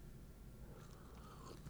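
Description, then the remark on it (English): A quiet sip of a bottled 8% stout beer called CFY Stout: soft slurping and wet mouth sounds over a low background hiss, with no one talking. “Let's have a sip. I think it's. I'm going to have another sip right now.”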